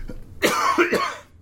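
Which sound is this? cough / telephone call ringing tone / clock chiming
cough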